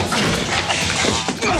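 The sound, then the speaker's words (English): A loud, dense burst of crashing noise with a few sharp thuds and smacks as Crockett holds a man up against the wall of a biker bar and bangs his head into a speaker, running unbroken for under two seconds. “But then he gets even saltier as Crockett holds him up against the wall and bangs his head into a speaker.”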